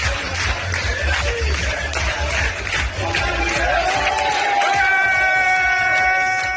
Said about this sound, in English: So for Republican Suck, I have a video, a really, really fun, enjoyable video showing former U.S. Secretary of State and former CIA Director Mike Pompeo dancing with Israeli soldiers. So let's take a look. Clapping along.